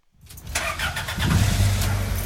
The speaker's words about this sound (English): This hulking white postal truck in Philadelphia is among more than 140,000 on the road that get an average of 8.2 miles to the gallon. It has no air conditioning, no airbags, no anti-lock brakes, and it's likely more than 30 years old.